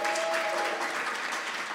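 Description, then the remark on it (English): An audience applauds for the cheesecake supplier, Travis Marley Cheesecake, in a dense, steady wash of clapping that holds an even loudness throughout, with a faint sustained tone briefly audible at the start. “Round of applause for Travis Marley Cheesecake.”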